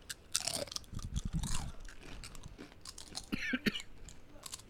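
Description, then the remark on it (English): Loud, brittle crunching of a crisp, spicy tortilla chip being bitten and chewed, with irregular sharp snaps and grinding bursts over a few seconds, no talking. “All right, chip cheers.”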